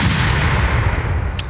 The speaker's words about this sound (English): And also another cannon for Eric.